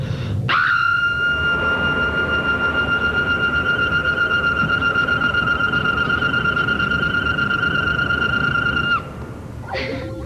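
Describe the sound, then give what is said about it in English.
A sonic scream blast effect from a kid practicing her screaming with sonic powers: a loud, piercing, steady high-pitched shriek over a roaring noise bed, held for about eight seconds before cutting off, then a brief second burst begins. “You are becoming rather skilled with your sonic powers”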